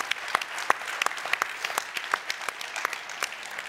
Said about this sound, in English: Okay, we're clapping.